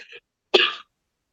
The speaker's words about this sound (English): I try to cough. I cough to mask it, so I'll be like.